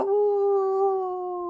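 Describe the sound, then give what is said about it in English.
A single long, steady howl from a human voice mimicking a wolf, held on a sustained pitch with clear harmonics and slowly trailing off, fairly loud with no other sounds. “And a wolf howled,”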